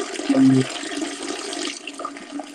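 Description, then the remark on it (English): A toilet flushes with a steady, loud rush of water that churns for a couple of seconds, with a brief low hum near the start, then begins to taper off. “Who honestly just took a piss?”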